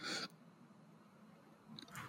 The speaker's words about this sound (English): Sorry, I was chewing, but I had the microphone, like, across the room.